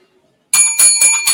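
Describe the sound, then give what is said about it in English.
A bright bell rings out in four quick, loud strikes with shimmering metallic overtones, each ring blending into the next, heard on its own with no talking. “where's the bell?”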